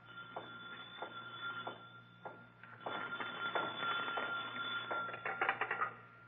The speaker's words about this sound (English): Suddenly, a phone rings on the desk of the night watchman, rings and shatters the silence of this modern tomb of ancient art.